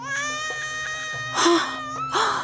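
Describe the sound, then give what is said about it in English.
A baby boy bawls in a basket carried out of the river reeds, a sustained, high-pitched wail that swells into two louder, strained bursts near the end, with no other voices. “She emerged from the river carrying the basket with the bawling infant inside.”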